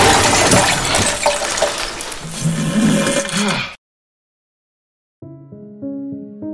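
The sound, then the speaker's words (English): Loud, rushing water gushes steadily through a pipe for a few seconds, then cuts off abruptly into silence before some tonal music starts. “Is that a pipe? Is that the water I'm drinking?”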